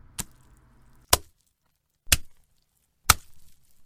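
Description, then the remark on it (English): A smoked haddock slapped against thighs four times, each a sharp, loud smack spaced about a second apart, with quiet pauses between and no talking. “And as for you, boy, you need to slap yourself on the thighs with this smoked haddock.”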